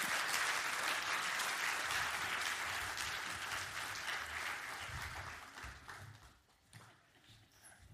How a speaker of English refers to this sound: Well, thank you, ladies, for your vulnerability, for your transparency, and your willingness to share. Everyone, give them a hand clap.